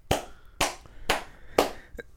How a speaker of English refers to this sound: Claps. Round of applause. Round of applause, okay, man.